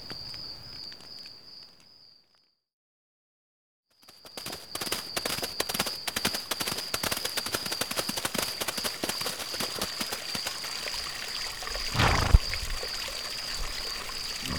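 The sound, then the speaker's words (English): Stream water flows with a steady rushing, splashing hiss while horses drink, a thin high steady tone running above it. Another sound plays briefly, then a short silence before the loud flowing resumes. No one speaks. “I'm glad we found this stream. I'll say. The horses certainly are thirsty.”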